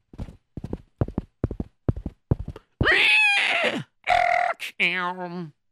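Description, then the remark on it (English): Horse hooves clip-clop in a steady, even rhythm of about seven crisp beats as a group of soldiers rides into town, then give way to a loud, wavering neigh that rises and trembles before cutting off. “And before you knew it, suddenly there was a bunch of soldiers coming into town.”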